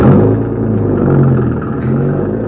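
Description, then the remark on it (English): A car engine is started to drive down a roadway, rumbling loudly and steadily, its low drone rising slightly in pitch as it revs a couple of times. No voices are heard. “Start her up and go down the roadway.”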